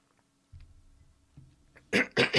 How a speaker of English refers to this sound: I have to clear my voice, clear my throat, but then I'm going to try an experiment.